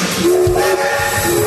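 A loud, sustained train whistle sound effect for the Train Teddy Bear Express blows, its steady tones held for the full moment with a breathy hiss underneath and no voices.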